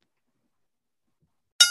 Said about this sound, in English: Cue the bell announcer, and let's start off with round one.